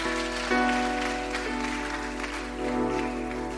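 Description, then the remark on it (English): A church audience claps steadily for a few seconds, a dense, even patter of many hands with no voices, while a low sustained musical tone hums underneath. “You can clap.”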